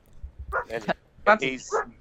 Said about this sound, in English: Dog, shut up.